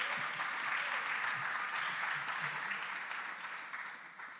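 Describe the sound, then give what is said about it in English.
A crowd applauds with Christmas cheer to welcome a woman coming up to share a story, in a steady, dense wash of clapping that holds for several seconds, then gradually thins and softens toward the end. “Let's Christmas cheer for her.”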